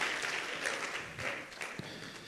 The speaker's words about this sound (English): Can you clap your hands before you're seated? Thank you, Jesus.